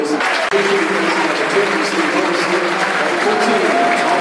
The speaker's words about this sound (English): Bradshaw's coming in. Good applause to Steve Morrison.